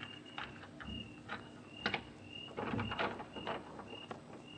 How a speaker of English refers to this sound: Come on. Don't close it. Okay. Okay, here we are. I'll open the door.